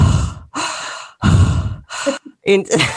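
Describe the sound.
Someone imitates the heavy, raspy breathing of a creepy prank caller: three loud, drawn-out breaths, then shorter huffs trailing into voiced vocal sounds.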